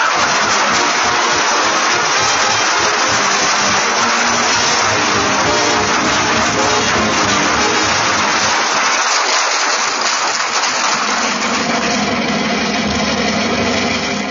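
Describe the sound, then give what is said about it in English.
A car engine runs steadily with a loud, hissing rumble throughout. Its low throb eases off partway through as the car pulls into a parking space next to a theater and comes to a stop. No one speaks. “Here's a parking space right here, Molly, right next to the theater.”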